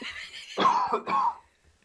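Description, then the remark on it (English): A person coughs twice in quick succession after coffee goes down the wrong way, harsh, with a brief gap between the two bursts and silence following. No one speaks. “Oh, this coffee's gone down the wrong hole.”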